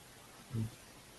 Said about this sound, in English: Let me try to make you a speaker and see if that helps, because yeah, it's all I hear is static.